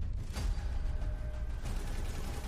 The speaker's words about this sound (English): Okay. Master Chief. Nice explosion. Looks like from the game.